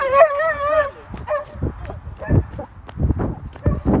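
A dog gives a high, wavering whine-like yelp at the start, followed by scattered short barks and yips, mixed with shuffling and footstep-like thumps.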